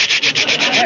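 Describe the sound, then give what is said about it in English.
A voice imitates the sputtering, choking engine of a car with a clogged fuel line, a loud, breathy rasp that stutters in quick, uneven bursts, briefly catching and dropping out several times in under a second. “Well, choked up, it seemed to me, like it wasn't getting any gas.”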